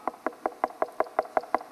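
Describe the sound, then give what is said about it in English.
A rapid, steady series of about ten sharp knocks on a door, evenly spaced, with no voices. “And I'm waiting for you to hear me knocking.”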